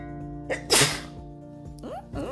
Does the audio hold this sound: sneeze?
yes